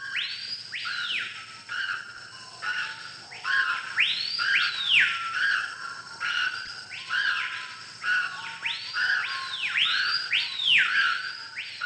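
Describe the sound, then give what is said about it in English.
Birds in the jungle screech over and over, harsh rising-and-falling calls repeating every second or so in a steady, overlapping chorus with a faint constant hiss beneath. “I don't think they sing, they just screech in pain.”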